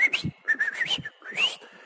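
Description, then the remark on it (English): A man whistles a short, lilting tune while sitting outside a canary's cage to teach the canary to sing: several quick rising and falling notes in bursts with brief pauses, clear and fairly loud with no talking. “Then he would sit outside the cage and keep whistling to that canary, just going...”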